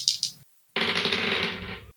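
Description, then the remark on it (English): Dice clatter across a hard tabletop in two bursts: a quick rattle, a brief pause, then a longer tumbling roll that settles after about a second, the dice showing 17 and 18. Fairly loud, with no voices. “Well, as requested, numbers on the dice are 17 and 18.”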